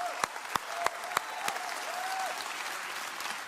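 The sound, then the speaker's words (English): An audience claps and shouts to God for their children: sustained clapping with cheers and shouts, a few sharp individual claps standing out early before blending into a dense, steady wash of applause and raised voices. “If you will, I want you to clap your hands and shout unto God for our kids right now.”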